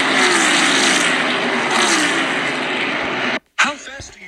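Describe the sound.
Loud, sustained roar of race car engines screaming past up close, with rising whine, then a sudden brief cutoff before the noise and a voice return.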